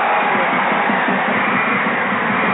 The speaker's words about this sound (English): That sounded like a tornado. Yeah. Are we in Kansas? I think it was supposed to be a crowd. That was one of the ones you were supposed to turn down, I think. Because it's really hard to tell that it's a crowd.